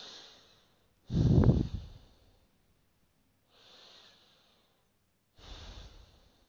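Slow, deep belly breaths, breathing in with the stomach pushed out and breathing out with the stomach pulled in: a strong breath from about one to two seconds, softer airy breaths around four and five and a half seconds, with quiet pauses in between and no talking.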